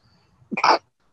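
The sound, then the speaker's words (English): A single loud sneeze from a person in Orlando: a brief breathy build-up followed by a sharp, explosive burst, then silence. No one speaks. “I've sneezed about 500 times here, so I'm not going to speak again until I'm done.”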